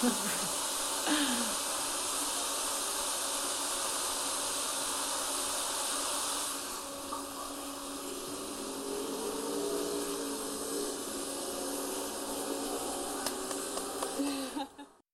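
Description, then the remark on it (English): A public urinal meant for women flushes once its door is closed, with a heavy, steady rush of hissing water that runs for about fifteen seconds, easing slightly partway through before cutting off at the end. No one speaks. “And also the toilet flashes once you close the door with this very heavy sound that we recorded and so that our audience will hear that.”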